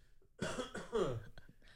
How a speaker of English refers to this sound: Are you wheezing? Yeah, that's weird, right? Let me cough that out. I'll cough that out.